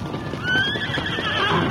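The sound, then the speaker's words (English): A horse whinnies loudly, its high wavering neigh riding over a steady rumble of hooves clopping and shuffling underneath. “Come on, let's get back to our horses.”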